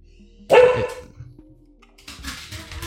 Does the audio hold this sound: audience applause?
no